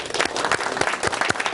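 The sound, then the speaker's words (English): An audience applauds after a gratitude exercise at a talk, dense overlapping claps forming a steady, fairly loud wash of sound that carries on without a break and has no talking over it. “Round of applause.”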